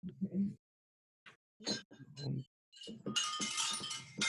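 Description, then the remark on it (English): Ten metal medals clink and jangle together in a bright, shimmering rattle much like wind chimes, building steadily toward the end after a few brief bursts of voices. “You guys hear that? It sounds like wind chimes.”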